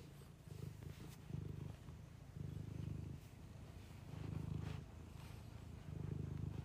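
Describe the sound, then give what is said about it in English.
A person imitates a cat's purr: a low, rumbling vocal purr repeated in steady bursts of about a second each, with no words spoken. “We just did the bit. You were purring.”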